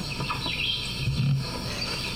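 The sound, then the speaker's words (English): A frog calls in short chirping bursts over a steady, buzzing night chorus of insects, all heard through a device's speaker at moderate volume, with no one talking. “Oh my gosh, I just want to get 3 seconds of this frog.”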